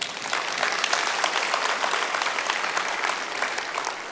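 Steady, loud audience applause fills the whole stretch, a dense crackle of many hands clapping at once without pauses or any voices rising above it.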